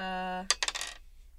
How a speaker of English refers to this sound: If you roll 6 on the wild die, you reroll it again. And if you keep rolling 6s, you just keep adding to it.